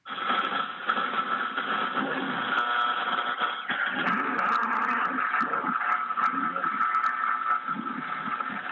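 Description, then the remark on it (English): A muffled, band-limited AM radio broadcast plays on a car radio in a parking garage, heavily distorted by poor reception, with hiss and a voice barely intelligible beneath crackling interference, steady and fairly loud throughout. “And because he was in a parking garage at the time, the radio station wasn't fully coming in, so it was very distorted.”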